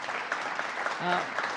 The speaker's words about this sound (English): Of course, no one's more local than my two commissioners, DMV Commissioner Mark Schroeder and Tim Hogs, our Civil Service Commissioner. Let's give them a round of applause and welcome home.